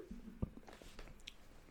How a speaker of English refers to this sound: I got the hiccups over here. I'm drinking some water.